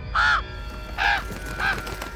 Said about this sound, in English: A crow flew in through the window and landed on Gull McMorna's outstretched arm. It hopped up to his shoulder, squawking loudly.